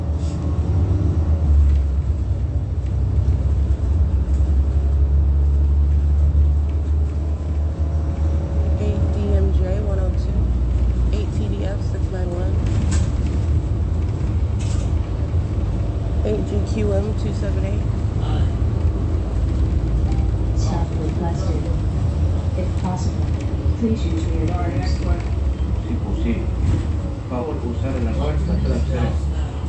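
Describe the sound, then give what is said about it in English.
A steady, loud low engine rumble from Omnitrans bus 2353 runs throughout, with passing traffic noise and faint, indistinct voices mixed into the constant drone. “Alright, the bus driver, first of all, it's sound on the bus, but also the brake lights are pulling off to the side.”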